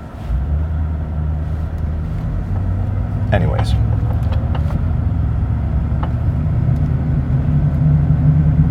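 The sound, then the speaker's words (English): A brief, bright car horn beep, from drivers in a turn lane honking at the car in front of them, cuts over the steady low rumble of a moving vehicle's engine, with a voice talking briefly amid the road noise. “Is that lady behind me beeping at me? Or are other people beeping at me?”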